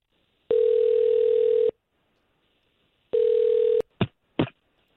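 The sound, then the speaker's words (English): A steady telephone dial tone sounds twice, each a second or so long, then two short dialing beeps follow in quick succession as a call is placed, clear with no one speaking. “We'll try to call him right now.”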